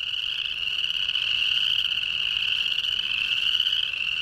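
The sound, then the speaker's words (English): A dense chorus of chorus frogs calling continuously in their spring mating chorus at a big marsh near the Great Salt Lake in northern Utah, a steady shrill trilling wall of many overlapping voices, fairly loud, with no talking. “I recorded these chorus frogs in northern Utah at a big marsh near the Great Salt Lake.”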